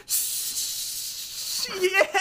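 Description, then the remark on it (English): A loud, steady hissing spray of champagne gushing from a bottle for over a second, sprayed to celebrate a win, then excited voices shout as the spray fades. “Whoa! Spray in my mouth! Spray in my mouth!”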